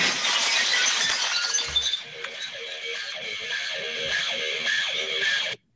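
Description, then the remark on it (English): A loud crash of shattering glass, the glass-breaking entrance theme of Stone Cold Steve Austin, with bright, crunching debris that keeps ringing and tinkling for several seconds before cutting off abruptly. No one speaks. “A glass breaking.”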